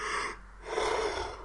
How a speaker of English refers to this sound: Again, big yawn.